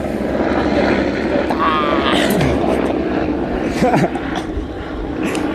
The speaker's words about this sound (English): It's a white helicopter. With blue. Oh, it's super loud.